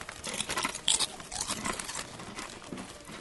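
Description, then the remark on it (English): Loud, crisp crunching and chewing of crunchy snacks directly into a microphone for one minute, a steady stream of brittle crackles and munches with bright high-pitched snaps, no talking. “What you do is you crunch obnoxiously into the microphone for one solid minute and one solid minute only, and then choke afterwards because you probably didn't swallow it by then.”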